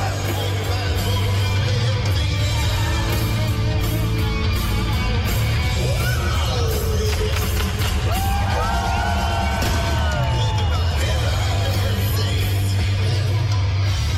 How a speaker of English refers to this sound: The clip you're listening to also has fireworks going off prematurely.